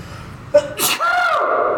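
A single loud sneeze, screamed on purpose, bursts out with a sharp, breathy explosion, trailing into a drawn-out, screaming vocal wail that holds for nearly a second before fading; it sprays onto a stainless steel wall.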